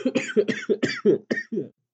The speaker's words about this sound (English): Yeah, fucking just cough.